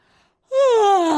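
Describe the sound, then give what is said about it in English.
One loud, drawn-out theatrical yawn from a single voice, sliding steadily downward in pitch over about a second after a brief quiet lead-in, exaggerated, like someone acting out a big yawn. “That's a theatrical yawn.”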